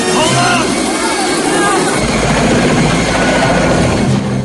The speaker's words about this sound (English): Podolsky lands a hit. Rambo's chopper goes into a tailspin.